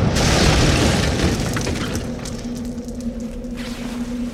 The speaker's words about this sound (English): I stood still as Santa smashed into one building and out the other side, before he came to rest on the ground behind him.